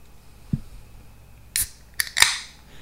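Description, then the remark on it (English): A can of Side Lounge Margarita Gose beer cracks open: a soft knock, then a sharp metallic snap of the tab and a short bright fizzing hiss as the pressure escapes. No one speaks. “Let's crack this thing open.”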